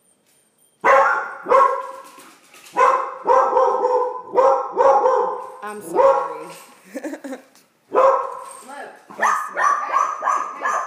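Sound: dogs barking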